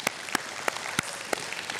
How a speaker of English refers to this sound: Now, while you're sitting, I want you to stomp your feet and clap your hands at the same time.